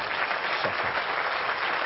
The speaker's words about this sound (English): Can you applaud that determination?